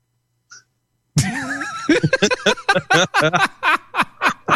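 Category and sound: human body sound, cough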